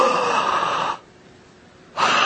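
A crowd draws a loud, breathy inhale together for about a second, falls quiet for a moment, then lets out a collective rushing exhale.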